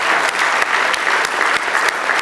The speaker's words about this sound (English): Let's give the Lord another good hand clap of praise. Hallelujah.